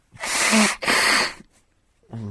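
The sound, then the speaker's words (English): On an LBC radio phone-in, a caller from Rotherhithe blows their nose in two loud, forceful honking bursts, each about half a second long with a brief pause between them. A moment of quiet follows before a voice begins speaking. “I've got to blow my nose.”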